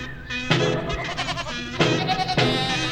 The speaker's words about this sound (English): Can we bring in the farm animals? Do I have that technology? Where are they?